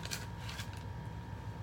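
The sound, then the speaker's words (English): Someone chews Sour Patch Watermelons gummy candies with soft, sticky mouth smacks and clicks, a handful of irregular bursts over a steady low hum, with no talking. “The noise of you chewing. They're gummies.”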